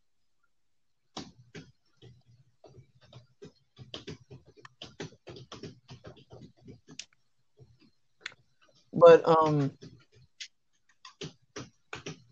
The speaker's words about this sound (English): All I hear is that's my dad typing loudly.